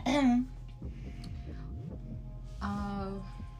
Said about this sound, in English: Sorry, guys. Let her clear her throat.